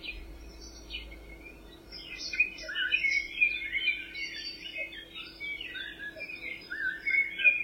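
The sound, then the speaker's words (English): Several birds chirp and sing continuously in a quiet forest, with varied high tweets and trills layered over a soft steady background hum, fairly faint. “Hear the beautiful bird song.”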